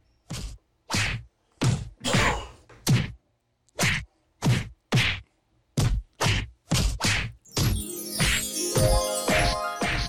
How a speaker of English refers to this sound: That is, that sounds to me, hold on. Okay, so it sounded like Will Smith slapping. Play it again.